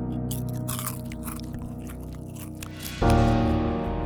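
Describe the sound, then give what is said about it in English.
Crunchy chewing of a ridged snack, with irregular crisp crunches over a steady low hum, before a louder sustained tone swells in near the end. “Crunch a munch.”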